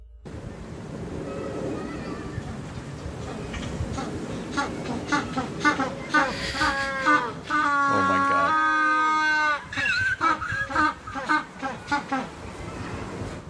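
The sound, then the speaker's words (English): A penguin's ecstatic display song: loud, braying honks that build into a long, harmonic trumpeting call, with other birds honking and squawking around it and a brief voice at the start. “Yeah, so that's their ecstatic song.”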